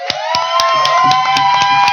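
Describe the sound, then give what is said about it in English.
A crowd cheers and whoops steadily for the nonprofit Kelly's Dream while hands clap in a sharp, regular rhythm, roughly four claps a second, loud and continuous for the whole two seconds. “I love that we have a crowd.”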